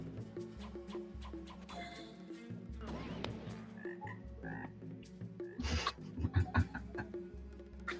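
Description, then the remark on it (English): A toad croaks repeatedly in low, rough, throaty pulses, steady, with a brief burst of louder croaks toward the end and no voices. “I summoned the toad.”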